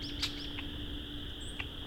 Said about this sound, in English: was hoping more than this would be here. It's only about 5 red-winged blackbirds, maybe.